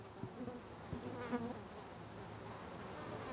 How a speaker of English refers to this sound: Oh, look at this! It's just, isn't it fabulous? The bees are just feasting on it.